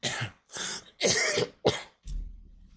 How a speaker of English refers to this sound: Cough, so.